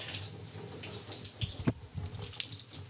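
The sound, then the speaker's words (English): Liquid drains steadily from two cans of white corn into a sink, a splashy stream with a few louder sloshes and clinks, no voices present. “And then you drain it, and you have to get as much water as you can out of the fish, using the lid to squeeze out the water.”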